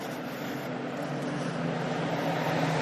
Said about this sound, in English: I'm intentionally recording this as I walk back to my car, hoping that some of what happened during class will happen right now. So here comes the bus.